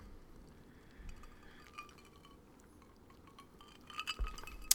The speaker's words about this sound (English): So, hold on. I'm going to have a sip here.